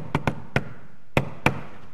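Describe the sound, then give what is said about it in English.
A patterned knock at a door: five sharp raps in an uneven rhythm, two quick, one alone, then two more after a pause, with no voices. “About that time, knock at the door. And it wasn't just a knock.”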